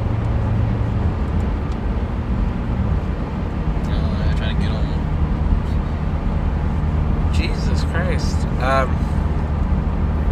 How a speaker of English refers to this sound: Look at all these fucking cars. Why? Where are they going? It's terrifying.